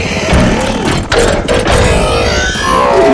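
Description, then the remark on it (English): Loud, continuous mechanical clanking and grinding, with sharp metallic clunks and whirring tones sliding up and down, as a large robot slowly transforms from an old crane into a machine on two wheels, dense throughout. “And it transforms quite slowly, and those noises are accompanying it.”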